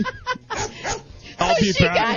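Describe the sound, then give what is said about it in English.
A person makes a run of high, whiny dog-like whimpers, short bursts first, then louder, wavering pitch-bending cries, with other voices faintly in the background. “That's not what my dog does.”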